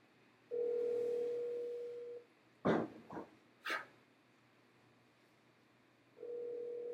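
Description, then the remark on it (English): An outgoing phone call's ringback tone sounds twice, a steady two-second hum with a long pause between. A few short dog barks fill the gap. No one speaks. “You think he's going to answer, listeners? He doesn't know we're calling.”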